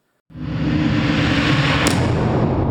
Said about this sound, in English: From Rare Encounter. Some other stuff. Reversed sounding explosions. That kind of stuff.